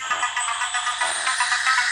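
A mobile phone ringtone plays a bright, tinny electronic melody of the Knight Rider TV theme, signalling a call from the phone owner's dad, steady and fairly loud throughout the short stretch, with no one talking over it.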